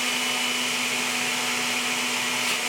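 A blender whirs steadily, a loud, unchanging motor drone with a constant hum running through it for the whole stretch, and no one speaks.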